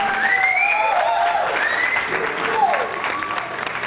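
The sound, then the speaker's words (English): A large crowd of Seattle Seahawks football fans cheers and screams continuously and loudly, celebrating a Super Bowl victory, with shrill whoops and rising shouts cutting through the dense roar. “That's the 12th man right there. That's I'm very telling loud. You, they're screaming.”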